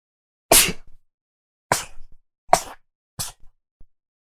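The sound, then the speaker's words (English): A string of four sharp, explosive sneezes, each a sudden loud burst trailing off quickly, spaced about a second apart, with short breathy sounds in between and no talking. “Sorry, I have to sneeze.”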